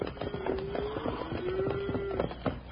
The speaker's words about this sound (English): Bill. Bill, listen. Ain't that cattle I hear? It sure is, Jingles. You sure had it figured right, Wild Bill. Here they come. Stay back in these rocks and let them go on by.